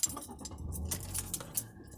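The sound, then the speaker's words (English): Keys jangle and clink repeatedly as they are taken out and handled, a busy run of small metallic rattles and chimes with no voices. “I don't know why I took the keys out of this shit, motherfucker.”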